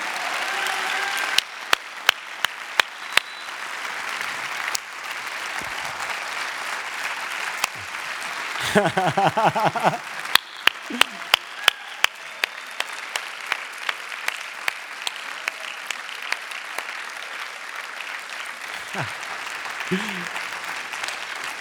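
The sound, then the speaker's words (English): A crowd claps steadily for about twenty seconds, sharp individual hand claps standing out over a dense, sustained wash of applause, with a brief burst of voices cheering partway through, as the audience claps for a man to come out and join them on stage. “And if you just clap enough, he might just come out from here and join us on stage.”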